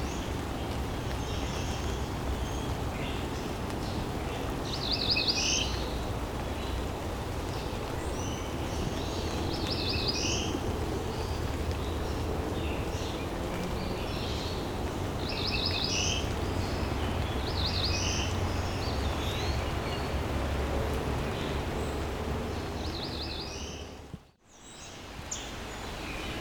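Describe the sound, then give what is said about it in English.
A cerulean warbler sings short, high buzzy phrases repeated every few seconds over a steady hiss of heavy rain and outdoor background noise. There is a brief dropout near the end. “I stepped away from the cerulean because it started raining a lot.”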